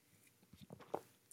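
A sip from a Fellow Carter mug: a quick series of soft slurping, wet mouth noises building to a brighter slurp, then a short sharp clack at the end, with no talking.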